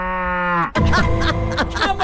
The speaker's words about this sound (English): Cows just mooing at them. What's going on, cows? What do you want?